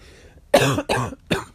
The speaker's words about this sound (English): Even in my life, as I coughed at that point, there was a discussion with someone at work and they slimed me.